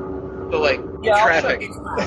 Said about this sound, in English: Hopefully you guys can hear me over the racket in the car. We can hear you, but the car's pretty loud.